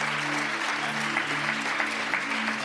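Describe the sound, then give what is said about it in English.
A large church audience, the Liquid family, claps steadily in a dense, continuous wash of applause, cheering on a man at his baptism, with scattered cheers rising above it and no pauses throughout. “And as you say, that is your Liquid family out there that is cheering you on.”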